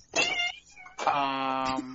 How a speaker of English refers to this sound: Do I hear your cat? Yeah.